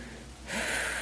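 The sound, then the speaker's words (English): A deep, steady inhale through the nose, taken as part of deep breathing, fairly loud, swelling into a sustained airy rush about halfway through and holding to the end, with no talking. “And keep breathing deep. Take a deep breath.”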